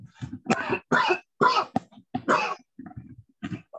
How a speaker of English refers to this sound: One second here, I have to cough a little bit.